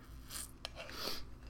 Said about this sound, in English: Hold on, I'm sipping my coffee a little bit.